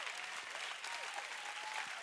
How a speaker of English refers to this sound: Come on. Hey, if we're gonna clap, let's do it well.